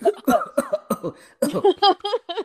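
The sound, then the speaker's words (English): A voice fakes a cough, a string of short, throaty, voiced bursts, fairly loud, followed by a few more quick vocal sounds in a choppy rhythm. “Cough, cough, Thunderbolts.”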